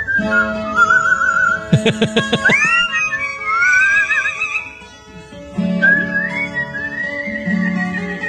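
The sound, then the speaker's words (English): A pet bird whistles sliding, warbling notes over music a person is playing in the background, with a quick burst of sharp chirps early on and a pause before the whistling resumes. “Now that you said that, I think maybe the bird is just whistling because he hears music.”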